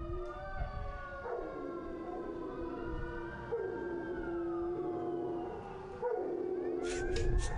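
Dogs howling together in long, wavering, overlapping tones that rise and fall, fairly loud and sustained throughout, with a sharper high cry breaking in near the end.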